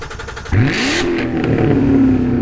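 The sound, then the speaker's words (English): The engine of a Daytona Sunrise Orange Metallic C7 Corvette with a manual transmission roars to life in a strip mall parking lot and revs up sharply, its pitch climbing before settling into a loud, steady growl, with no voices. “It's a Daytona Sunrise Orange Metallic C7 manual Corvette.”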